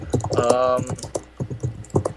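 Rapid, uneven, overly loud clacking of keys on a computer keyboard, with a brief murmur of voice mixed in near the start.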